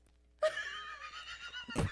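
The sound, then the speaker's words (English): A single long horse whinny rings out loud, its wavering, quivering tone lasting over a second before ending in a sharp snort-like burst. “It was the horse.”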